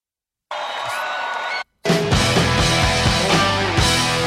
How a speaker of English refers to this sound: That's a lot of cheering there. It says 5:59 and there's still like a minute left. Is there a hidden track on here?